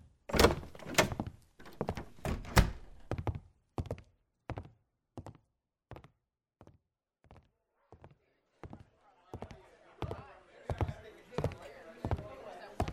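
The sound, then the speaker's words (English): A door knocks and thuds over and over in a steady series of sharp, hollow impacts, loud at first and gradually softer, with faint background noise building near the end. “Get the door”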